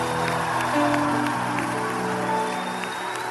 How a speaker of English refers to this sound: Now I want you to take a minute and clap for God like excellent people. Hey! Come on, that is for your local chairman. Clap for Jesus!